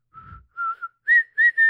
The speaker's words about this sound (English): The worst was when this escalated to strange whistled music, which resembles funeral music. Like the dirge marches, the whistle started ticking on the tune of a funeral march. Can you whistle a funeral march so we get the idea?